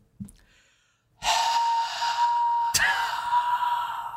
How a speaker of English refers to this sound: I want you to imagine that I'm doing this just right onto your face with my hot, hot breath.